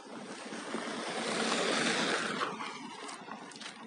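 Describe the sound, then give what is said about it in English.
A car drives past on a road through the woods, its broad rushing tyre and engine noise swelling to a peak midway, then slowly fading away, with no voices. “There's never cars, and suddenly the first time we're recording a podcast on this walk, there's like 4 cars.”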